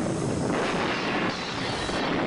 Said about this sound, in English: Don't worry, the explosion sound effect will cover up the fact that it's a model.